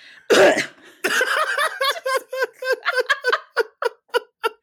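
A single sharp, close cough bursts out, followed at once by a run of rhythmic, breathy laughter that slows and fades into separate short bursts.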